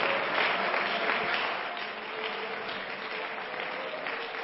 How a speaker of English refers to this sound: Everybody clap your hands unto the Lord right now.